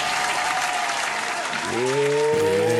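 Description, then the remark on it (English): Loud, dense clapping fills the whole stretch as a steady wash of applause, in the Social Beast Jam Room. Partway through, sustained tonal whoops or cheers rise over it and swell at the end. “Let me get some motherfucking claps.”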